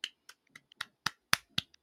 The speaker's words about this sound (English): Congrats to them. Yep, I'm clapping. Congrats to them.